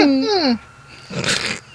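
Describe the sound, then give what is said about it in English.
A short, high dog-like whine that slides downward in pitch, apparently voiced by a person imitating it, followed by a breathy, sighing exhale. “He looked at the receptionist and wagged his tail, then walked over to the sign, looked at it, and whined.”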